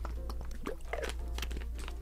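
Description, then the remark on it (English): Wet mouth sounds of someone sipping water: a few small slurps and swallows with soft clicks, fairly quiet over a low steady hum, with no talking. “I need a sip of water real quick.”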